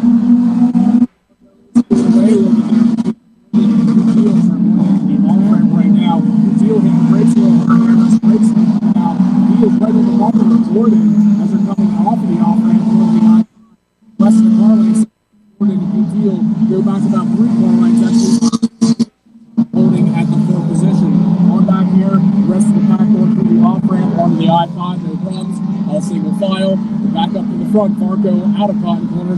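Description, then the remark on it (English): A steady, loud engine roar drones throughout, rising and falling in pitch as the race leaders' cars pass on the track, with brief gaps and a voice speaking over the noise. “Leaders go by.”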